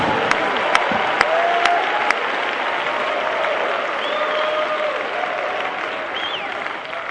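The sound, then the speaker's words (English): An audience claps in a steady, dense roar of applause, with a few sharp, louder claps standing out early on and faint voices calling out beneath the noise. “How did you clap when you got the Holy Ghost in 75?”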